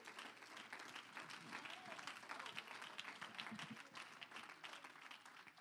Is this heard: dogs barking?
no